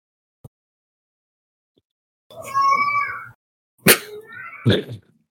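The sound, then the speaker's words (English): A cat named Susu lets out one long, loud, plaintive meow with a wavering pitch, followed by two shorter, sharper yowls after a brief pause. No one speaks. “Did you hear Susu yelling? I did. He's so loud. Very plaintive.”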